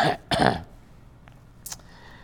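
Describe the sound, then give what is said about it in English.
A single abrupt cough in two quick harsh bursts, almost like a throat clear, followed by quiet and a brief faint sniff-like hiss. “I can disappear people with a single cough.”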